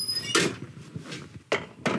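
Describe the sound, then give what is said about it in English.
An oven door is handled and shut after a dish of pudding chômeur is put in, with a short squeak at the start followed by three sharp clattering bangs spaced unevenly across two seconds, no voices. “And then the maple syrup and the cream will condense a little bit in the oven, caramelize a little bit, and I'm putting these guys in.”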